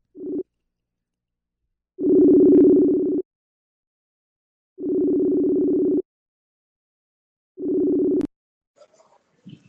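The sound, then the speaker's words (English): A phone call rings out: a low, buzzy ringback tone repeats in steady bursts with pauses between, then cuts off with a click followed by faint rustling on the line. “I got to make a phone call really fast.”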